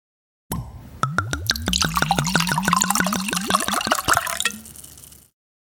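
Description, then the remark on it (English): Rosé wine being poured from a bottle, a steady run of rapid rhythmic glugs and splashes lasting several seconds, rising slightly in pitch as the glass fills, with no talking. “So we've poured the wine.”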